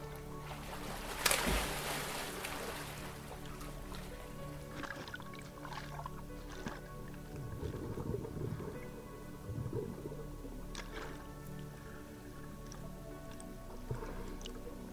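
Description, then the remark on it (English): Water sloshes and splashes as a snorkeler pushes off into gentle waves of clear, warm water, opening with a louder splash near the start, then softer laps, drips and gurgles over a low, steady watery rumble with no voices. “You put on your snorkel mask and push yourself off into the gentle waves.”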